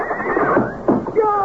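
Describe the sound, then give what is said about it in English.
A panicked horse in a stall whinnies loudly and shrilly in repeated quavering bursts, agitated, with rising and falling tones over a brief, continuous stretch. “You're making them panic. Oh, nonsense. Something's wrong with your horses, not mine.”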